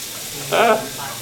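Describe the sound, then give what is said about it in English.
Bacon frying in a pan gives a steady, soft crackling hiss throughout, with a brief louder burst in the middle where a short voice-like sound rises over the sizzle. “Too much bacon is never a problem. It's just I have too much to cook.”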